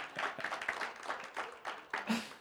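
A quiet round of applause from a group, a steady patter of many hands clapping with a few scattered voices mixed in, welcoming a woman back to the gathering.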